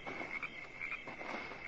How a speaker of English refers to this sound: The moon was out, and the cricket serenade was going full key when somebody came looking for the money.